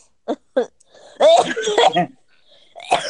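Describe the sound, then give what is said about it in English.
Two quick coughs in a row, then a longer strained, throaty vocal sound, and one more short cough near the end. “So this is really disgusting, but every time I cough, I pee myself.”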